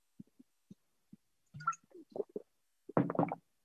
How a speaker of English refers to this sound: Had to get a swig of water right there.